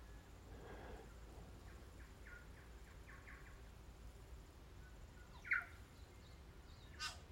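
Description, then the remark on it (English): Scattered bird calls in a native forest in New Zealand during a mountain bike ride: a run of soft repeated chirps early on, then a couple of sharper, louder calls near the end over a steady low background rumble. “I'm on a mountain bike ride in a native forest, a forest of native trees in New Zealand. And there are so many birds.”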